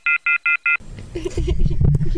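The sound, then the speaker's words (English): Four short, evenly spaced phone beeps sound clearly, a hang-up tone as an angry caller hangs up on the call, then cut off as people start talking over some background noise. “I like it when Angry Phone Guy is angry enough to hang up on us and then call us back.”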